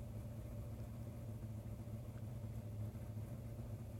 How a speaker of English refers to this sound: It kind of sounds like a car. 68 Camaro getting fired up.